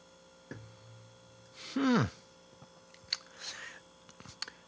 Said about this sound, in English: I'm interested in this one. I really want to stick it in my face, and I'm going to now. That's very interesting. One more sip, if I may be so bold.